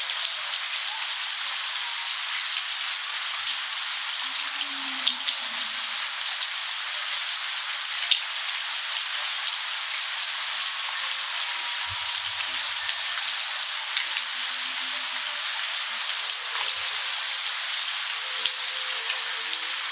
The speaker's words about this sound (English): We leave you this week just ringing in the rain, just ringing in the rain. Eric van der Wijk recorded the subtle twinkling of wind chimes during a rainstorm in Modesto, California, and picked up a passing train and a howling coyote along the way.